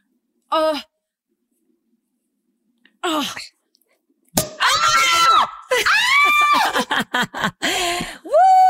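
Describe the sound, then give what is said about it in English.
A single sharp champagne cork pop bursts out, immediately followed by loud, excited shrieks and high-pitched screaming voices that rise and fall for several seconds. “I get so scared about this. I get corks. So scared of this, and I'm scared it's going to go everywhere.”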